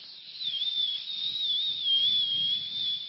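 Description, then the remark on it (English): Someone imitates a pressure cooker's whistle with one long, high, shrill tone that wavers slightly in pitch and holds steady for about three seconds, with no talking. “One of them pressure cookers that's going.”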